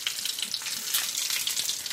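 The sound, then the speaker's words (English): Fritters sizzle in hot frying oil: a steady hiss of dense crackling and popping that holds at an even level throughout, with no voices. “Oh, it's sizzling good, isn't it?”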